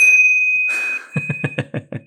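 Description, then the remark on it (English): A last call bell rings out with a bright, lingering tone, then is struck in a quick, even run of about six clanging hits, loud, with no talking. “And that's the last call bell.”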